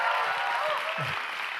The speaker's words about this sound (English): Please give my wife a real roar of applause.